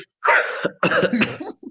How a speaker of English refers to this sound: Bless you, goodness gracious! Which, those are very forceful sneezes too. It hurts my insides.